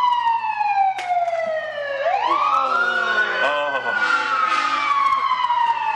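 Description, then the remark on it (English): A loud emergency siren wails as it goes by, its tone gliding down then sweeping back up in a rising whoop, filling the whole stretch with steady, piercing sound. “Hey, wait for the siren to go by.”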